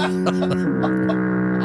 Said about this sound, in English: Give him another foghorn.